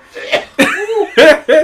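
A loud sneezing fit: several sharp, explosive bursts in quick succession, one drawn out with a voiced, strained tail.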